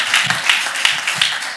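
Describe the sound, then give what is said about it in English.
An audience applauds a speaker steadily after his talk, a dense wash of many hands clapping at once, fairly loud, with no voices over it. “Can we applaud Engineer Adeyanju again?”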